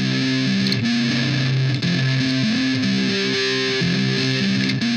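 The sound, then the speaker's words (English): A distorted electric guitar riff loops steadily through a solid state stack preset, with the Guitar Amp Pro plugin in Logic emulating transistor electronics; its gritty, buzzy amp tone is loud, with sustained chords and single-note lines repeating in a steady rhythm and no voices. “If we choose the solid state stack preset in our channel strip, the same loop sounds like this.”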